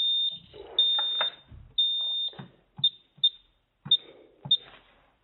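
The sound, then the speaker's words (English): An office security alarm keypad beeps with a high electronic tone as the alarm is turned off on entering an office in a small town in the Bay Area: a few long sustained beeps first, then four short, evenly spaced beeps, mixed with light clicks and handling noise. “So now I'm going into the office and I have to turn off the alarm. So you're going to hear some beeping.”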